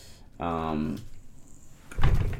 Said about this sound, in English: Just knocked my desk.